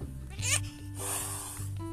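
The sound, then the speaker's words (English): A cat, Fluffy the Destroyer, hisses at a dog that has walked in, in two harsh, breathy bursts, the second longer and steadier, over a low continuous hum with no one talking. “Oh my goodness, the dog walked in. You can hear the hiss.”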